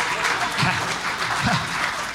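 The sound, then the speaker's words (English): An audience claps steadily, a dense wash of many hands applauding together at a fairly loud, even level throughout, with no pauses. “Give my friend a big clap.”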